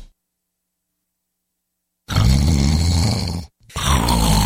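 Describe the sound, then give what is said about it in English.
Two loud, harsh snores follow a stretch of silence: a long rasping rumble, a short pause, then another starting up, heavy with no talking. “What if you could stop the snoring instantly without nose strips, mouth guards, or a procedure?”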